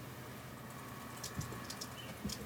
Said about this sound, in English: People can probably hear me typing, too. Yeah, they can. Awesome. Yeah, because you can hear me typing, can't you?